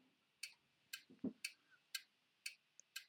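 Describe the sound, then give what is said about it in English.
A clock ticks steadily, about two crisp ticks per second, six in all, quiet, with one soft low thump partway through and no voices. “What's that one? Ticking.”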